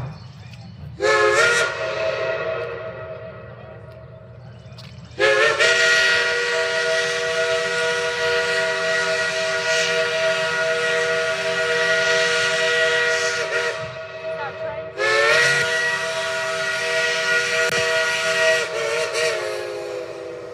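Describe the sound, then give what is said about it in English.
A restored steam locomotive of the Cass Scenic Railroad in Cass, Pocahontas County, West Virginia, blows its whistle three times: one short blast, then a long sustained one, then another long blast, loud, with hissing steam and a low rumble underneath. “You will enjoy the experience of this relaxing rail ride on a steam engine that has been restored.”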